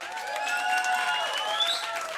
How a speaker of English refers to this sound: Okay. If you guys think I'm right, clap.